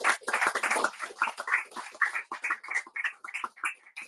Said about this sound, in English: Okay, everybody, big round of applause. Thank you for the presentation.